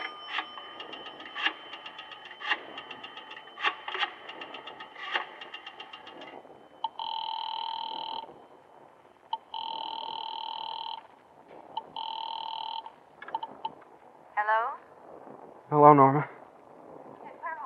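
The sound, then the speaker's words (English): A run of rapid clicks gives way to a telephone ringing in three long, evenly spaced electronic tones, then a couple of short warbling chirps. “Mind if I use your telephone?”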